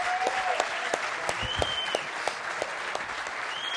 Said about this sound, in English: And let's give him a round of applause for his service in the Guard.